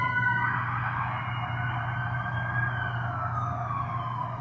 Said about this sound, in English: Those of you at home, if you can't tell, we've got a siren going by pretty loud. You should be thankful I didn't try to compete with the siren.